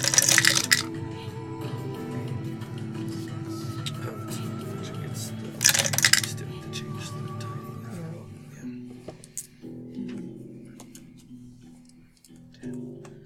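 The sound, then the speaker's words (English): Two short, loud bursts of rattling clatter as five four-sided dice are rolled across a hard table during a tabletop role-playing game, with scattered faint clicks between them and a low murmur in the background. “So if you got 10 damage total, that means you rolled a one on all five of those dice.”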